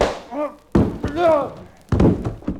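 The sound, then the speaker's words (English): A sharp blow lands in a fistfight, followed about a second later by a heavy thud like a body hitting the floor, with strained grunts and cries in between, loud. “knocked you down. Well, it looks like we're both down.”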